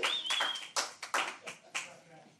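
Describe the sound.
An audience claps together in loud, uneven bursts of sharp hand claps that swell and fade over a couple of seconds, with a faint high whistle-like tone and murmuring voices mixed in.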